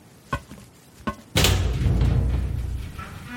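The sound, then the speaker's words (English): Two short, sharp clunks like the latch of a door in a wall releasing, then the door abruptly opens and a loud, steady roar of noise floods in and continues to the end. “A thunken click comes from the wall I think the door might be on, and it opens suddenly, pouring in a crashing wave of sunlight and dust, almost blinding me.”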